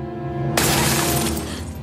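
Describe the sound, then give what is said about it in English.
A sudden, loud crash of sugar glass shattering, bursting in sharply and scattering into a bright, crackling spray of shards for most of a second over a steady low background hum. “Luckily, it's just fucking sugar glass.”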